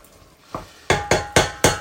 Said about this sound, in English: basically this is me cutting a carrot, by the way.